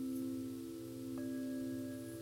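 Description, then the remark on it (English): A Tibetan singing bowl, rung as a meditation bell, sounds with a steady, sustained hum of layered low tones. Partway through, a soft second strike adds a brighter overtone above the drone. No one speaks. “Let the bell sounds bring you back home.”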